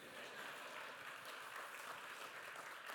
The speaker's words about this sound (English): Yeah, y'all can clap.